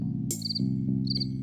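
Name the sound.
crickets chirping sound effect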